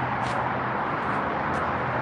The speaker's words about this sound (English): I don't think I can hear the background noise from the cars, man, so I don't think it's gonna block none of it out.